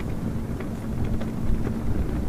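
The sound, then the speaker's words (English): Strong wind roars and buffets steadily while prayer flags snap and flutter in a few irregular bursts, fairly loud, with no voices. “Prayer flags.”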